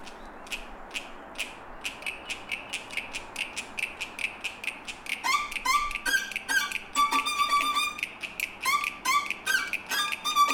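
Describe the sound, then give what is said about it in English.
Voices imitate frogs answering each other with quick, high squeaky chirps, first a steady run of clicky croaks, then a second, more tonal squeaking voice joining in, one on the beat and one off the beat, so the two trade calls back and forth rhythmically. “You know how the frogs are always answering each other? Yep. Okay, so you go first.”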